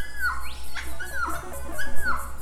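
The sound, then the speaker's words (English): Three short, nervous dove calls, each a clear whistled note that swoops and drops, spaced evenly apart over a steady hiss of insects or wind in the background. “Nervous notes of a dove.”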